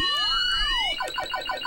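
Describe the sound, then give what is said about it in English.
Sound effects from the Vectrex video game Time Pilot: electronic tones sweep up and down and cross each other, then give way to a rapid series of short, falling bleeps. No one speaks. “One thing I was always impressed about with the Vectrex is the sound.”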